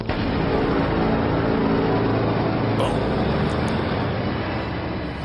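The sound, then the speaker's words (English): A loud, steady roar of a car engine and road noise runs continuously for several seconds, unbroken, with no voices over it. “So if you want to give me a send in the car, I'd appreciate it.”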